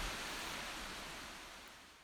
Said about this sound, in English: You hear that sound right there? I've missed that. This is great. I miss hearing that water run, being able to sit next to it.